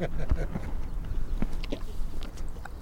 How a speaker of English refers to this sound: That crunching you hear, you have to give one to Cash, that's big donkey jaws munching on a horse treat.